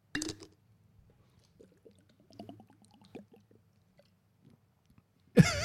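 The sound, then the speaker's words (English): Wet swallowing and gulping of someone drinking water, a run of soft irregular glugs and mouth clicks over a low hum, with a sharp burst of noise at the start and end. “I think the reason why it happens is because whenever I'm drinking, it's the panic that I've realized I haven't had enough water today”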